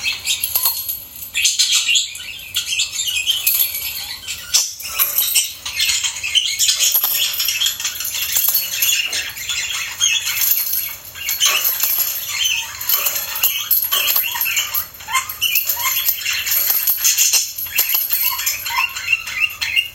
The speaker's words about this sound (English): In a similar vein of sounds from the outdoors, I also received a lot of bird chirping recordings, I think about 4 different ones, so here are a few that I enjoy. I think they're really fun to listen to.